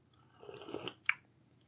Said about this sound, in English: Okay, it's Earl Grey. The back of the packet here says, an uplifting black tea with lemon, lavender and bergamot. Let's have a quick little sip of that.